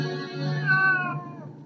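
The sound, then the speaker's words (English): A single drawn-out cat meow, fairly loud, its pitch rising and then sliding back down before trailing off, with no other sounds around it. “Stop looking at me, you fucking cat!”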